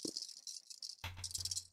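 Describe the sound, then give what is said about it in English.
Dice are rolled for a check in a tabletop Pokemon role-playing game, rattling and clattering for a couple of seconds, a busy, continuous shaking sound that gets denser and louder in the second half, with no talking. “Here comes all the snake eyes.”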